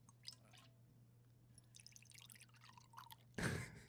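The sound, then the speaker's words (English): Barrel-aged beer pours into a glass in uneven splashy trickles and drips, building to a louder gush near the end, over a faint steady hum with no talking. “Let's get one more pour sound of this.”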